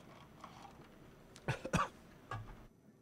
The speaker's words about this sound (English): Yeah, look, even made him cough. He had to shut the microphone off.